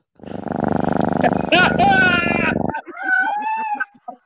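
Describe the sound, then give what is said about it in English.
A loud cat sound effect played from a soundboard: a low rumbling growl for a couple of seconds, then a string of high, drawn-out meowing yowls. “So if I had a fucking cat, a cat little soundboard, come on,”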